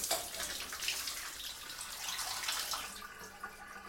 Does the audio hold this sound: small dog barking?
no